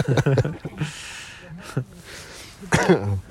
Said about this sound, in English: You got an altitude cough, or yeah, is it just I think a bit of both, to be quite honest. But I don't think the altitude helps, but it's just cough can't get rid of.